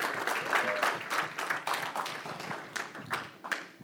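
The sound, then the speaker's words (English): A crowd claps steadily for a man coming up to give a short testimony, a dense wash of overlapping handclaps with a few sharper claps standing out, at moderate loudness without any talking. “Yeah, it's okay to clap for”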